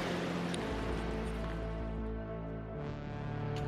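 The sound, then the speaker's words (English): The Dude Kosi River roaring far below the Hillary Swing Bridge, a steel-cable suspension bridge about 124 metres high, a continuous, full roar of flowing water with a low, droning undertone and no voices. “The river flows underneath it. You can hear behind me.”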